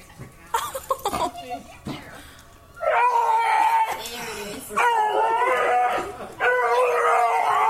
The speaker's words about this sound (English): That is all the dog, apparently.